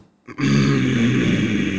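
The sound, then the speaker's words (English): A person imitates an angry, dog-like warning growl heard in someone's night terrors, one sustained rough rumbling sound lasting over a second and a half, fairly loud and steady after a brief quiet start. “It was like a growl, but it was more like a.”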